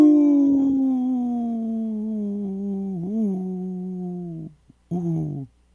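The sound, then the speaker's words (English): A wolf's long, steady howl slowly sinks in pitch for about four seconds, breaks briefly, then returns as a shorter howl. It sounds clear, with no talking. “supported by Howling for Wolves, protecting wolves for future generations. Howl! Howl! Howl!”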